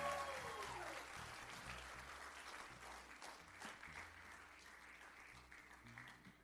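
A church audience applauds steadily for several seconds as a woman is called up to greet the people, a dense wash of clapping that stays fairly even, with a faint tonal sweep early on beneath the claps.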